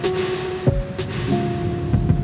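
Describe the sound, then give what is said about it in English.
Steady, dense rain from a New York storm pours down, a constant hiss of drops pattering on surfaces with a few heavier thuds and a low rumble underneath, no voices present. “But New York storms kick down your door, hit you with a fire hose, and then are gone in minutes.”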